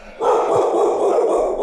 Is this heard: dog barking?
yes